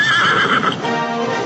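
A horse lets out a loud whinny, its quavering call filling the moment, with hooves clip-clopping along underneath.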